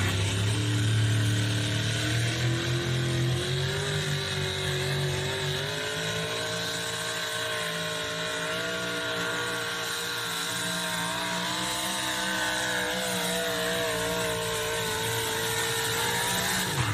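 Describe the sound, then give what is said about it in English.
A loud, heavy pulling-truck engine roars steadily at a truck pull, its pitch climbing and shifting as the revs surge under strain around 220 feet down the track, with no voices. “I actually heard a surge in RPM right here about 220 feet. Truck down there.”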